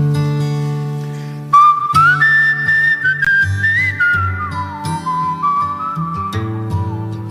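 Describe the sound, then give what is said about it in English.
A person whistles a clear, wandering melody as an introduction to a song, over a steady low instrumental accompaniment, the whistle bright, sliding between notes for several seconds. “I've devised a little whistling introduction for it.”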